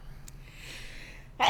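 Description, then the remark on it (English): After a stretch of quiet room tone, a sudden sharp sneeze bursts out right at the end, loud and abrupt. “Gesundheit.”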